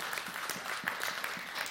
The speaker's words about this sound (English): How about a round of applause for that young guy?